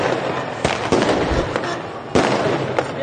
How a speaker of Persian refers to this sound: دارن آتش بازی میکنن. دارن با ماشین میرن، باز آتش بازیه.